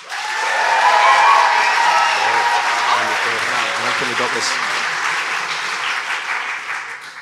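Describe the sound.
A live audience at MacFest applauds steadily for several seconds to vote on which side is in the right, a dense wash of clapping with scattered cheers, and a voice talking underneath partway through before the clapping gradually thins out.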